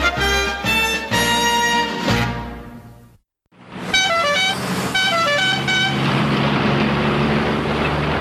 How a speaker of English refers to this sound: And with that sound of a car horn, we move on to Il Sorpasso, Dino Risi's masterpiece.